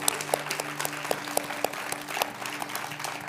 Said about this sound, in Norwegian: Do you want to give yourselves and each other a big hand? Gi deg selv og hverandre en stor applaus.